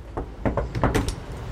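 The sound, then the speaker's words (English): A series of about six sharp knocks rap on the front door of Alexandra Shulman's house, moderately loud, in two loose clusters with brief pauses between, over quiet outdoor background noise. “So let's go and knock on the rather gorgeous front door of Alexandra Shulman.”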